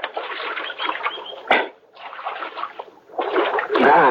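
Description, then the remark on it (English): Splashing of water at Little Creek as riders who have climbed down from their horses drink from it, in uneven bursts, with a sharp slap partway through, short pauses between, and a busier, louder stretch of splashing at the end. “And we climbed out from our horses and got a drink of water.”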